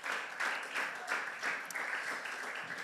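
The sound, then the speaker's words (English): A crowd of young people claps together in a steady, dense wash of applause that holds at an even, moderate loudness for a few seconds, with no voices over it. “So give yourselves a hand for that. That's worth clapping for.”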